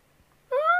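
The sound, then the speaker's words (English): In a garage, a person imitates a bird call: after a brief quiet moment, one loud, sustained, slightly rising hoot-like cry with a rich, reedy tone. It lasts about half a second. “I don't know why he do the bird call, but might get his ass slapped.”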